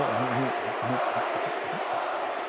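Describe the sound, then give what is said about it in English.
A Jazz basketball arena crowd chants in unison during a timeout with the score 114-106 against the Nuggets, a short call repeated rhythmically over a loud, steady roar of cheering voices. “Crowd still chanting, Bogey.”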